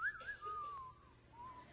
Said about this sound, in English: The good, the bad, and the ugly. Let's all whistle it together.